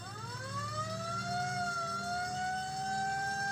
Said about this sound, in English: Sirens began to grow in volume, drawing nearer.